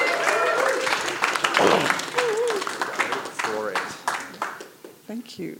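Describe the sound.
A room full of people at a Rouse Hill Probus meeting clapping to welcome a speaker, a steady dense patter of applause mixed with scattered cheers and overlapping voices, fairly loud throughout.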